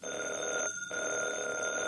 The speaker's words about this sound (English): Good heavens. If I hadn't heard it with my own ears. Heavens, did that phone ring? Yes.